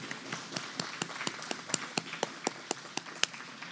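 Applause from a small group at a morning church service, honouring four people's accomplishments, with sharp, evenly spaced claps standing out above a softer wash of scattered clapping. It holds steady at a moderate level for a few seconds, with no voices.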